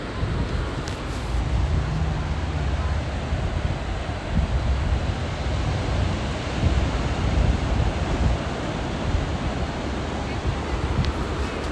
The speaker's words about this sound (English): coming to you from the Pacific Ocean. You may hear some background people as they ride and or walk past. You may also hear some traffic, but hopefully you can hear the waves.